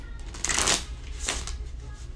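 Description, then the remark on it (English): A tarot card is flipped back over with a quick papery flick, followed by a second softer rustle of card handling, against a low background hum. “Ooh, let me flip that back around.”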